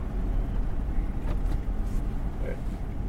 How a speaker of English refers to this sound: All right, here we are. We are out on the road, and we're going to go ahead and get the truck stuck here in a snowbank right about here.